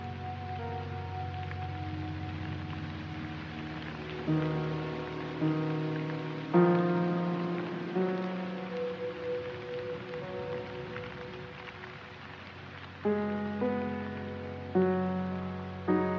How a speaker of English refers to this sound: But then you realize that there are some very happy ducks out there, and the grass is getting greener and growing, and the trees and the flowers are appreciating this rain, and you can just stay inside and look at it through the window, safe and dry.